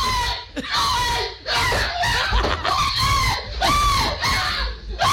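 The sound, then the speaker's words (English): A grown man, probably in his mid-40s, screams in panic among coworkers at a squirrel he thinks is in the room, a string of loud, strained, high-pitched yells and shrieks that rise and fall almost without pause for about five seconds. “This is a grown man probably in his mid-40s. I mean... He was screaming like that.”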